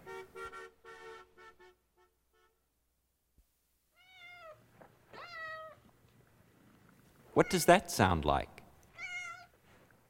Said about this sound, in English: A cat meowing?